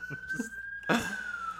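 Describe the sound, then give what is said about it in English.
A police siren holds a steady high wail in the background, then slowly drops in pitch, while people talk over it. “There's a How's siren in the background.”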